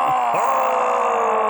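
A loud, sustained scream from the character Fender in a Van Damme film fight scene, as Gibson elbows him after ramming his head through a wall. The scream holds steady for the whole stretch, a strained, groaning cry that barely wavers in pitch after a brief catch at the start. No one speaks over it.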